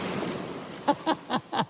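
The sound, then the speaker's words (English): Waves wash steadily onto the seashore in a soft, continuous roar, followed by four short, evenly spaced cries that ring out over the surf. “Okay, that's waves crashing on the seashore.”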